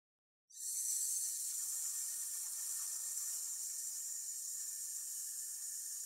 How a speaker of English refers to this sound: As we repeat the exercise, notice whether each repetition feels very similar to the one you just did, or whether it has changed in some way. One final hiss. Inhale.